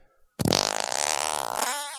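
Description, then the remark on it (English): A voice blows a loud, sustained raspberry imitating a superhero's fart, about a second and a half of buzzing, fluttering noise that trails off with a short gurgle at the end. “Talking about what kind of sound each Marvel hero makes when they fart.”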